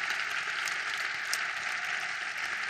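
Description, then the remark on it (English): An audience in a very hot tent applauds steadily in the afternoon, many hands clapping in a dense, even wash of sound that stays at a constant level throughout, with no voices over it. “I wonder if we could just give Patrick and Diane another really warm round of applause.”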